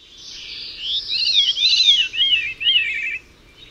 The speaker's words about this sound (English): What's more, the syrinx is situated in such a way to allow birds to make complicated twists to their melodies and even play two notes simultaneously. This effect is quite obvious in the two-tone song of the veery thrush.